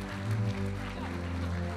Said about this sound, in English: Come on, let's give a clap to all these families, eh? It's wonderful.